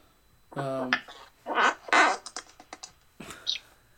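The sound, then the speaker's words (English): A brief, low, buzzy squeak from wiping something across a table during a live show with an audience, followed by scrubbing bursts and a quick series of light clicks and taps. “I wiped something off my table, and it made a squeaky sound.”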